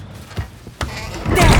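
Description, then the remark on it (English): A door swings shut with a couple of solid thuds, followed by a rising rustle of movement. “Now the door's closed and we're all hidden.”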